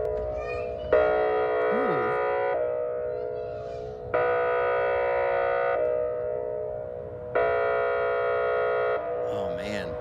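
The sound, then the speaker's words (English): The tsunami warning siren in Cannon Beach drones steadily while a louder, chord-like wail blares three times, each blast lasting about a second and a half with short gaps between, and brief wavering sounds in between. “I have never heard the tsunami warning in Cannon Beach before.”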